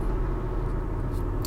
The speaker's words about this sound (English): I tend to record these podcasts in my car on my drive, either to or from work.